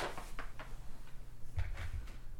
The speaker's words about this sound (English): You hear the slam of a door.